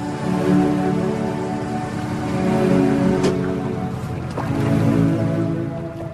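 In a teaser video, a fishing boat's motor drones steadily on the water with two people aboard, while waves slosh and splash against the hull, with a couple of brief knocks; no one speaks.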